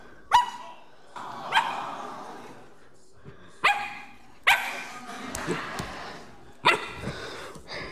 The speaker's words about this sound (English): Well, a few months ago in the Adkins home, we purchased a brand new puppy. Check it out.